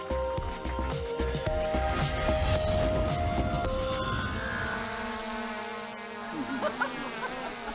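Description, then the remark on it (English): A steady, loud propeller buzz from a small drone in flight, with sustained whining tones that shift in pitch as it maneuvers, continuous throughout. “That's a pretty good drone.”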